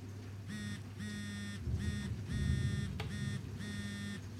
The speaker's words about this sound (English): The phone rings.